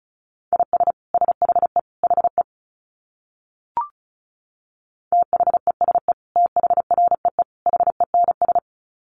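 Fast Morse code at about 35 words per minute: a steady, mid-pitched tone keyed in rapid dits and dahs, in two runs separated by a short pause with a single faint click.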